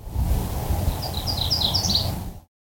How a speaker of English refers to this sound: 2 seconds after I tapped Analyze, BirdNet told me that the bird is almost certainly a MacGillivray's warbler, Geothlypis tholmii.